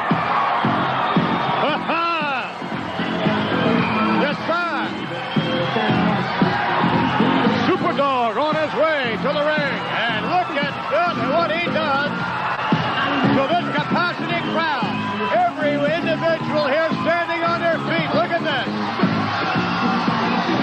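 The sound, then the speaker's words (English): A large arena crowd roars and cheers continuously for the wrestler Junkyard Dog's entrance, with scattered loud whoops and shouts rising above the dense, sustained noise of thousands of voices. “He really knows how to excite that crowd, and they really love this man.”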